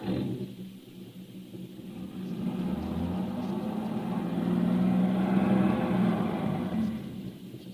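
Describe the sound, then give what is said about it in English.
A car engine revs and strains steadily for several seconds, its low drone swelling louder midway as if the wheels are spinning in place, stuck in a ditch. No one speaks. “Come on. Start the car. But I'm telling you the truth. We're stuck in this ditch.”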